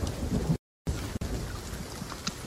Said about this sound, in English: Oh god, there's lightning striking around me. Lightning!